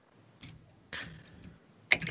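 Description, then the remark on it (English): A few sharp keyboard clicks as someone types in a chat, tapping out at an irregular pace, with short gaps of quiet between the bursts and no voices. “Sorry, I was typing in a chat.”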